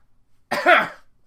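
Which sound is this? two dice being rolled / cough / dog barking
cough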